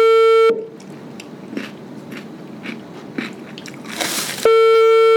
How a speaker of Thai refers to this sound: มันอร่อยอ่ะมันหยุดไม่ได้อ่ะนั่งก็แบบ อาจจะได้ยินเสียงตลอดว่ามีเคี้ยวหนอนเคี้ยวหนอนเคี้ยวหนอนไปเรื่อย